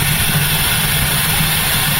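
Water pours steadily into a large 1.8-gallon bottle at the big laundry room sink, a loud, continuous rushing hiss over a low droning hum that holds even throughout, with no voices.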